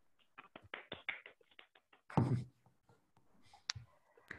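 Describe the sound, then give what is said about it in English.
A few scattered, uneven hand claps from participants in an online meeting who unmute themselves to clap for a speaker, thin and fairly quiet, followed by a short louder burst of noise and a couple of faint clicks; no one speaks. “or everyone can unmute themselves and clap and clap for him at that.”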